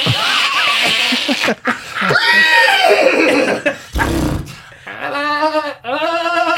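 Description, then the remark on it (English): A voice imitates a goat, letting out several loud, quavering bleats, the pitch wobbling and breaking between short pauses, with no ordinary speech. “I'm a goat.”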